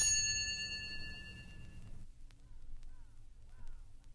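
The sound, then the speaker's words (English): A single bright bell chime, the page-turn signal in a Muppets read-along story, rings out clearly and rings on for about two seconds before fading, followed by quieter background murmur. “Wow, like, what a groovy bell, man, but what's it mean, you know? Turn page!”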